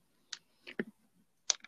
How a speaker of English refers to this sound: I hear typing. Who's typing? I'm typing. Like, what are you typing about?